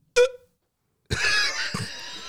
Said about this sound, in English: Bro, I got the fucking. I got the hiccups.